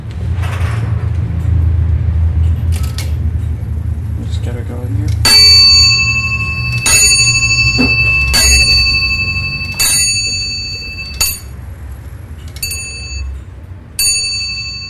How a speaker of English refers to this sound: you will get whatever hour or quarter struck on bells that it happens to be